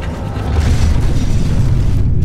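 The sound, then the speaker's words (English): A massive, thunderous crash as skywalks of more than 60 tons of steel and concrete rip free of their ceiling rods and fall onto dancers below, a deep continuous rumbling roar that stays loud for a couple of seconds with crunching debris, without any voices. “More than 60 tons of steel and concrete fell onto the dancers below, spraying bystanders with deadly glass shrapnel.”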